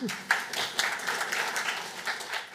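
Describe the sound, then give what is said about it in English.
A church audience breaks into steady applause as a woman is called up to share her story before being baptized, many hands clapping in a dense, even patter at moderate volume that holds for a few seconds without letting up. “Round of applause.”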